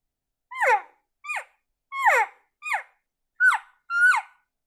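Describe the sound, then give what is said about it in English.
Six short, high-pitched elk calf calls in an uneven series, each a quick squealing mew that slides downward in pitch, with clear silence between them and no talking. “That high pitch, that's calf calls.”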